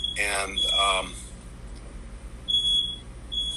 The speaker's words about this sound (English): And I'm sorry. I got a little beeping there. I think it's just coughing. Is that too annoying? Yes, it's too annoying.